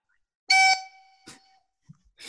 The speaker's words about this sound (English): And Paul, what does your buzzer sound like?